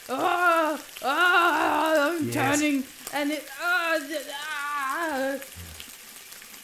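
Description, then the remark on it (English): Steady, crackling sizzle like frying as something is dipped into hot acid, continuous, with a person talking over it the whole time. “Oh, it sizzles. It sizzles. Okay, it's hot.”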